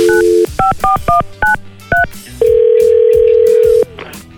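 A morning radio show dials a listener's boyfriend: a quick run of seven electronic keypad beeps, followed by one long, steady ringback tone, clear with no voices.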